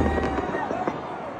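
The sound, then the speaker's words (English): Several quick fireworks bursts crackle and pop in fast succession over a busy, noisy background at Circa Resort and Casino, fairly loud, lasting just over a second. “fireworks going off at Circa Resort and Casino”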